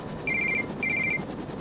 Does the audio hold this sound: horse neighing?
no